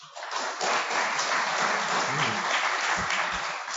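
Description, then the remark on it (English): A crowd applauds steadily as a vote on which of three items is the fiction, here item number two about the Chemical Abstracts Service and the 50 millionth unique chemical substance; a dense wash of many hands clapping at an even, fairly loud level for several seconds with no talking. “Okay, if you think that number two about the chemical abstract service and the 50 millionth unique chemical substance is the fiction, applaud now.”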